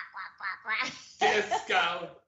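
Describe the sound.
A person imitates a duck with a few quick nasal quacks, then launches into longer, louder quacking squawks, close and lively, lasting about two seconds.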